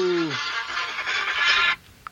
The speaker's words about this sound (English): Sorry about that. A Sooners – ringtone going off. It's my Uncle Barry calling. I'll have to call him back.